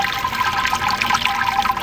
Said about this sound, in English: I just pulled out the malt pipe, as you can possibly hear the wort draining out.